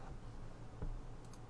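A few soft, scattered clicks of keyboard typing, faint, with one slightly more distinct keystroke midway through a quiet background.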